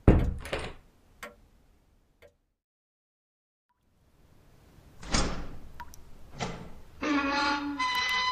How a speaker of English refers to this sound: Where did you learn to pick a lock, Miss Curie? My mother taught me.